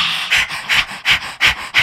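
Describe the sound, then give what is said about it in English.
A person does a dog's breath breathing exercise, panting like a dog in five quick, breathy huffs in a steady rhythm, fairly loud with no talking. “No, dog's breath.”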